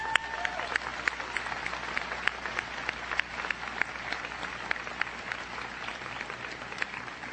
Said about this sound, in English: Can we have a round of applause for these people?